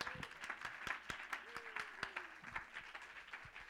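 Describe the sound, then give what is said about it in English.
An audience claps in praise of God, a dense, lively wash of applause, with sharp individual claps standing out in a rough rhythm and a voice rising faintly underneath. “Oh, somebody ought to clap your hands and give Him praise.”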